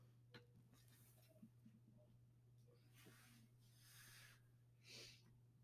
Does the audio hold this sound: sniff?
yes